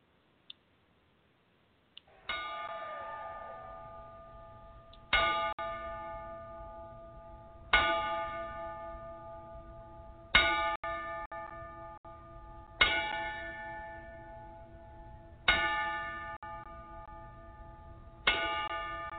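A ring bell is struck slowly and evenly in a ten-bell salute for a man who has died, about every two and a half seconds, each clear metallic strike ringing out and fading before the next. No one speaks.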